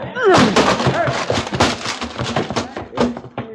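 door being busted down

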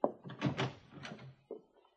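door opening and closing

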